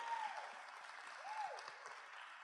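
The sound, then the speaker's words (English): A few audience members at a talk clap briefly at a point about transformation, a steady, fast patter forming a dense, even wash of applause for a couple of seconds with no voices. “I always love it when someone claps and then no one else claps with and it stops so fast.”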